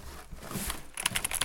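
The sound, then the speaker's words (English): Crisp, clacky keystrokes on an RGB backlit mechanical gaming keyboard, a quick run of about six taps in the last half-second, after a moment of soft handling noise. “It's a RGB backlit mechanical gaming keyboard.”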